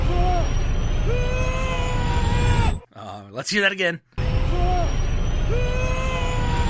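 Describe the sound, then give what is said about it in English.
Tom Cruise's crazy yell from a movie bursts out for about a second, strained and climbing in pitch, set between stretches of a man talking. “Like right here, where I want to play Tom Cruise's crazy yell that I hate.”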